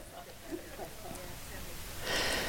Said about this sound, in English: See, my nose runs when I talk. My Kate said, he's like, "Why do you have to sniff the whole time you're talking?" Because you want me to snot run down my face?